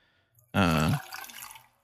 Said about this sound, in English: He's pouring a drink for the listeners on this audio only podcast.